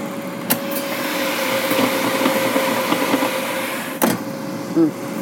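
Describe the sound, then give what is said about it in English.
An air fryer cooking potatoes for homemade potato chips: a steady whirring fan drone with a constant low hum and a soft hiss beneath, broken by a couple of sharp clicks. “Now, I think I already hear them cooking just a wee bit.”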